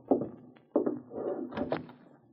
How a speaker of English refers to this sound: Let me open the door, ma'am.